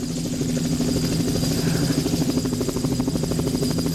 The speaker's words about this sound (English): The helicopter, yeah, that's right.